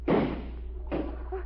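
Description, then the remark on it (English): Two sharp, loud gunshot blasts fired to shoot the lock off a door, each with a booming, thudding decay, the second coming just under a second after the first. “I'm going to shoot the lock off.”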